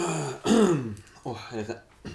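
Someone clears their throat, a rough, voiced rasp followed by a couple of shorter gravelly grunts over about two seconds, with no other sounds.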